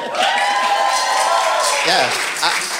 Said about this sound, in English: Do we need to inform the, give it a round of applause because there's a lot of you here.